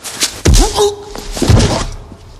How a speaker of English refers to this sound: One punch knocks him out.